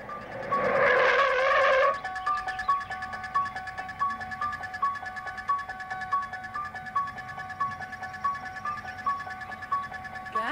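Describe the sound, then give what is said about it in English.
In a film scene, a car brakes hard and stops when someone yells after the driver. A short, loud tire screech lasts about two seconds, followed by a steady run of repeating, tinny tonal pulses. “When Annie yells after him and he stops the car.”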